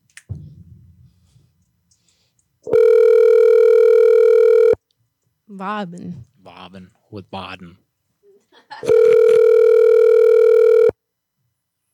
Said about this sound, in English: Come on, answer the phone.